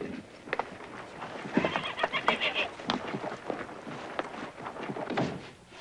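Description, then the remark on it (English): A horse lets out a loud, quavering whinny, surrounded by scattered hoof clops and a few dull knocks; no one speaks. “Get on off that horse.”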